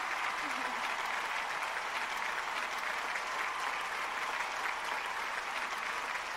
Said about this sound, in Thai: รบกวนยืนขึ้นรับเสียงปรบมือจากเราหน่อยครับ